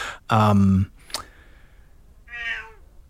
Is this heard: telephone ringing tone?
no